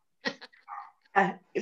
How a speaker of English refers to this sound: can you hear the dogs? Postman's just come onto the street. Yeah, somebody's just opened the gate. With everything you're saying, I think that's quite a timely bark.